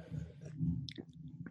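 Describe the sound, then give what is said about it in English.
Crunchy chewing of a cheese puff, with a steady low munching texture and a few sharper crackly bites standing out near the end, with no voices. “Is that a cheese puff?”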